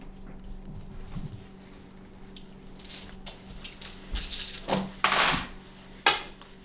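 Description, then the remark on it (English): Dice spin and rattle across a hard tabletop, a faint steady whir of clicks that grows into several sharper clattering knocks before settling, over a low constant hum. “Wild spinning dice.”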